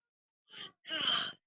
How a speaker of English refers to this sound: And then there you go yawning.